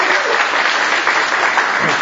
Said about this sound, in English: Give a round of applause to the good man.